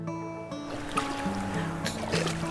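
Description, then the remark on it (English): Soft splashes of water scooped by hand onto a person's forehead, a few uneven bursts over about two seconds, layered over a steady low motor hum and running water. “Just splashing some water through my forehead and under my armpits, just rubbing the sweat.”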